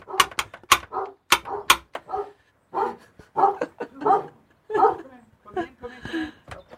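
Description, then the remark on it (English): A basset hound named Humphrey barks and whimpers in short, irregular bursts of yelps and whines, with a few sharp clicks and knocks near the start. “You'll hear Humphrey pottering about in the background through this episode.”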